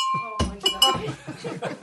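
A small bell, rung as a sound effect to signal approval of the topics and direction of a role-played pillow talk, rings with a bright, sustained metallic tone, its ring lingering faintly as several voices break into excited talk and laughter over it.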